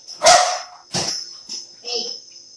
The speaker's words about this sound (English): Babe, he's barking by the tree.